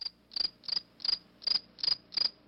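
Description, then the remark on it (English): Crickets chirp in a steady rhythm, six bright pulsing bursts spaced evenly apart, clear with no talking over them. “Cue the crickets.”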